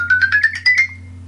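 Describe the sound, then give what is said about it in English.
The "Ascending" alarm tone played from an iPod's internal speaker: a quick run of about eight bright electronic pulses climbing steadily in pitch, then cutting off, over a faint low hum. “Alarm. Ascending. Ascending. Selected.”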